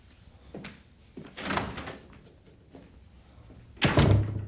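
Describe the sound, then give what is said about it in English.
A door is handled and pulled shut by the character Tony Soprano, ending in a firm but unhurried close rather than a slam. A few shuffling, rattling movements lead up to it, fairly clear, with no one speaking. “Slightly amazed he didn't slam the door.”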